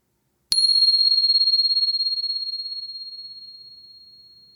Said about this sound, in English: Once again, settling in. And here comes the bell.